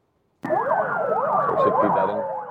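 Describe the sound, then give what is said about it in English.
Several emergency vehicle sirens wail together, loud, their rising and falling tones overlapping with a steady descending tone, starting abruptly and continuing without pause, in Dnipro, Ukraine, marking the end of a three-day search and rescue operation after an attack. “Sirens mark the end of a search and rescue marathon.”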